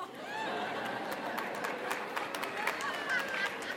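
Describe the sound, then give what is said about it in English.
Scattered applause from part of an audience, a steady patter of claps lasting a few seconds over a background of crowd murmur and chatter. “That's cute that some of you are applauding.”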